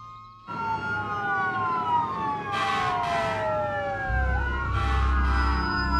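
A fire truck siren wails loudly over a rumbling engine, with harsh horn blasts cutting in twice as its pitch drops while it rushes past.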